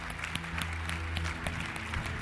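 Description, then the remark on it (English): An audience claps together in steady, sustained applause as a hand clap of praise to the Lord, many hands striking in a dense, continuous patter with a low hum underneath. “Could we, worship team, could we just give the Lord a hand clap of praise?”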